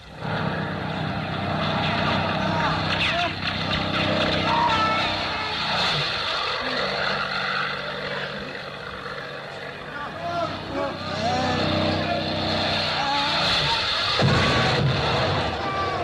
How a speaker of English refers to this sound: Look, the plane! There are two of them!